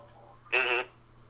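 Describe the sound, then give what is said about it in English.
A quick electronic alarm sounds two rapid, buzzy beeps that run together into one short, bright burst, standing out loudly over a faint steady hum. “There is a quick alarm sound.”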